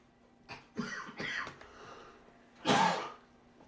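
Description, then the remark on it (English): A few rough throat-clearing sounds followed by a single louder, harsher cough, with no talking. “Sorry, I've got a bit of a cough right now.”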